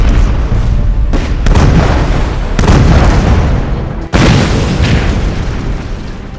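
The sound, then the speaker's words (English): A rapid series of heavy bomb explosions as Allied planes bomb the Germans: deep booming blasts that overlap into a continuous rumbling roar, with several sharp new detonations breaking through; loud throughout, no voices. “Finally, Allied planes could take off. Runway 27 left. Cleared for takeoff. And start bombing the Germans.”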